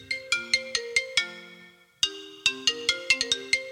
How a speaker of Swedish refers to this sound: Visst, är det en konstig ringsignal som inte går att komma ihåg?